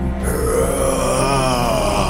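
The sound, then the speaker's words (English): A man's voice lets out a long, low, growling roar in imitation of a monster, sustained and loud for about two seconds with a rough, guttural rasp that rises slightly in pitch. “And you just hear this roar as its teeth, big, toothy maw, opens up and it roars.”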